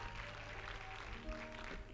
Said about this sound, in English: Would you clap your hands again to the Lord and give him praise with me? Thank you, Lord. Thank you, Lord.